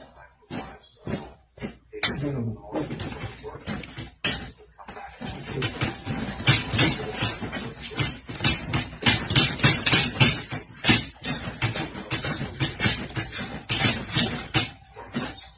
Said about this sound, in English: Now remember, every time you hear that, that is a 26-year-old man punching a 75-year-old man in the head. Not in the body, in the head and face.